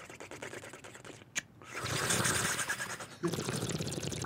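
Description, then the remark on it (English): Steady gurgling of water bubbling, made to mimic the burble of a bong, with a brief click and pause partway through before the bubbling resumes. “do you know how you can do a bong noise, right?”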